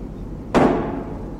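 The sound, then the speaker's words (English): A single loud bang as something heavy slams against the door of a cockpit bathroom on an aircraft, striking sharply and fading over a brief, rumbling decay above a low steady background hum. “Just then, they heard a loud bang, and something heavy hit the door of the cockpit bathroom.”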